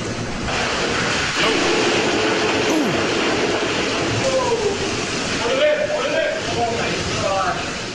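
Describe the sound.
Beer blasts out of one of several giant pressurized beer tanks after a man twists something on it, a loud, steady roaring gush, a continuous hissing rush like a fire hose that never lets up, with faint voices buried beneath.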